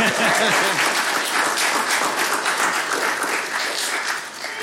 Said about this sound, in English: I'm just leaving a pause because they're probably going to clap again.